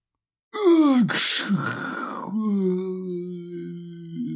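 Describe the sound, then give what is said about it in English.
A voice imitates lightning: a falling, moaning tone breaks into a loud hissing, crackly burst, then settles into a long, steady, eerie wail that trails on to the end. “Your lightning sounds like it came a little at the end. That's like a spooky lightning for Halloween.”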